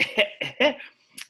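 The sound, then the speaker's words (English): A quick run of four harsh coughs in steady rhythm, fairly loud, ending with a softer breathy exhale, from a person with walking pneumonia. “I'm a third grade teacher, theater writer, currently diagnosed with walking pneumonia, so hopefully you can excuse the cough.”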